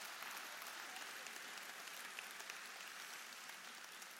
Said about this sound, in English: Let's give them a round of applause as they make their way back to their seats.